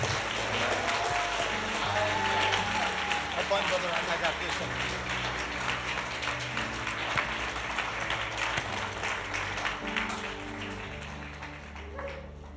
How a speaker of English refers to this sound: Would you please stand up on your feet and put your best hand clap together for our beloved brother,